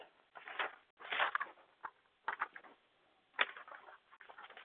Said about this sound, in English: Flipping paper. Okay, maybe I won't find where I put it.